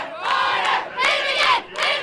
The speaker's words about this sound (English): It's senior night. Everyone's wearing black and gold, and they're cheering on the Andale Indians.